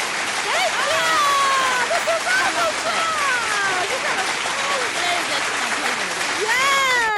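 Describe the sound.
A crowd claps steadily and loudly for several seconds as a guest is welcomed onto a show, a dense wash of hands, with rising whoops and cheering voices rippling over the applause throughout.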